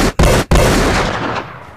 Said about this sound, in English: Gunshots.